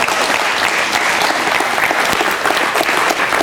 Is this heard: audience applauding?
yes